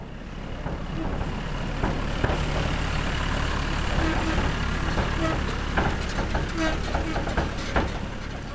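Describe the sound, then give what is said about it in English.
A big truck rumbles steadily down a deserted road, its low engine drone continuous while loose metal parts rattle, squeak and clank in irregular bursts, heard as if from inside the cab. “The big truck rattled and squeaked as they rumbled down the deserted roadway.”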